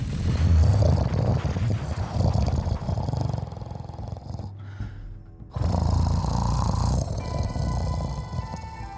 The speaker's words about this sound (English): Sorry, that's our washing machine.